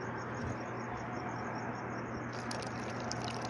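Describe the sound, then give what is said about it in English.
A drink is poured steadily into a glass, a continuous rushing, fizzy splash lasting the whole stretch with a faint low hum underneath and no talking. “I'm probably pouring it way too fast.”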